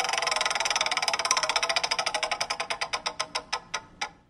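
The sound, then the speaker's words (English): A prize wheel spins to pick a category, with a rapid ratcheting clatter of clicks that gradually slow and spread apart until the last few ticks land singly; fairly loud, no voices. “Now we're going to spin the wheel and get you a category”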